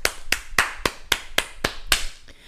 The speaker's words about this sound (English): But as we shift gears a little bit, on a happier note, the Houston Astros are back on the World Series stage. And you know what? Hold on. Let me give a round of applause.